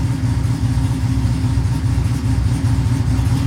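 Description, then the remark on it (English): A steady, low engine idle at 900 RPM, set to drop to 600 RPM, rumbles without a break, its deep pulsing throb even and loud throughout, with no voices over it. “She's at 900 now. She'll drop down to 600 RPMs.”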